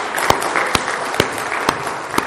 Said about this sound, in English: And some of y'all clapped.